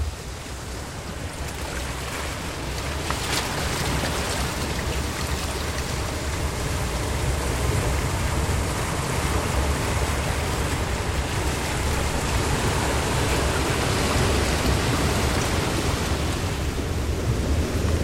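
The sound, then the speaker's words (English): Heavy surf crashes and roars steadily against a rocky shore at a beach with rock pools, a dense, continuous wash of breaking waves with no voices. “This beach has wonderful rock pools filled with sea anemones and mussels and clams and all sorts of sea life that I never really bothered to identify.”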